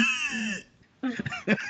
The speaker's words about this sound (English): I can't. You're making me cough even just hearing that. It's so funny that I cough.